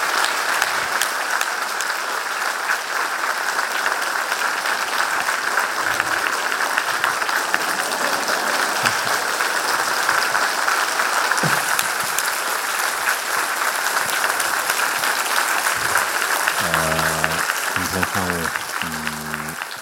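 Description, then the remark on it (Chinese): Warm, sustained applause from a large audience at the third World Youth Buddhist Seminar, welcoming Khenpo Sodargye Rinpoche to speak on Tibetan Buddhist study and practice; a dense, steady roar of clapping at full volume for about twenty seconds, with a brief voice emerging near the end. “那么接下来就请大家以热烈的掌声请上师仁波切为我们讲述藏传明喇巴的学修体系。”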